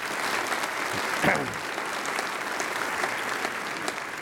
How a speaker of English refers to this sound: And we are so grateful for those who volunteered to help decorate our sanctuary. Would you give them a big round of applause? Yes.